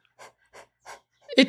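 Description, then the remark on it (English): A pug named Sigroid pants in three short, breathy, evenly spaced huffs, soft and raspy, before a louder voice cuts in at the very end. “I understand he's a pug, but like he just barks all the time, and then when he sees me, he's really happy.”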